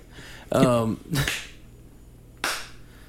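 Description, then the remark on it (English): A deliberate slow clap: two slow hand claps, sharp and fairly loud, spaced more than a second apart, as people try to sync their claps, with a short voiced sound just before the first clap. “God, get that sensual clap going.”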